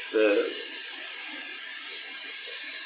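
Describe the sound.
Whiskey is poured steadily into a glass, a continuous hissing trickle lasting a few seconds, with a brief snatch of voice at the very start.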